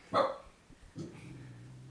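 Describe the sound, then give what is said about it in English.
A single sharp dog bark rings out near the start, followed by a softer low whimper or growl that trails off; nobody speaks. “Dog barking in the background.”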